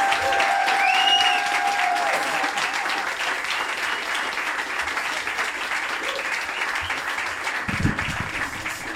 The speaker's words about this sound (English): So, ladies and gentlemen, please give a warm, egomaniacal round of applause for Kevin McDonald, the egomaniac.